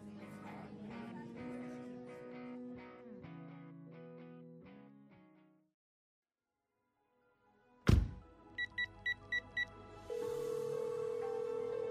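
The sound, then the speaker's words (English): After music fades and a thud, a quick run of telephone keypad tones beeps, then a steady ringing tone hums on the line of an outgoing call, clear. “Pick up. Pick up. Pick up the damn phone.”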